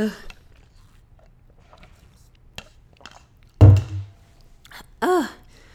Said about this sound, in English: But anyway, time for a water sip.